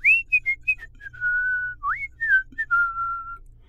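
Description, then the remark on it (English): Someone whistles a short, wandering tune, a string of quick notes followed by long held tones and upward slides, with a faint low hum underneath and no talking. “So Kandata went for a swim and whistled to himself.”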